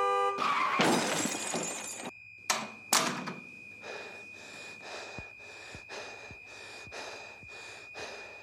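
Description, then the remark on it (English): A loud crash as a car hits a person running late to class, with shattering, breaking debris, then two sharp heavy thuds, followed by a steady run of rhythmic, gasping pulses that fade into the background. No one speaks. “While Emilio tries to hurry up for class, when suddenly he gets hit by a car.”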